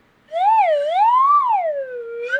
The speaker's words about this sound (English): So mine, see if you can recognize what it is. It's a slide whistle.